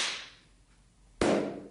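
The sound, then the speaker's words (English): Two single hand claps, about a second apart, with no talking. The first, made by hitting the fingertips together hard, is sharp, bright and high-pitched. The second, made by clapping two cupped hands together, is a louder, fuller, lower-pitched clap that rings out briefly. “Yeah, the first one, I hit the ends of my fingers together quite hard, which made a really high-pitched clap.”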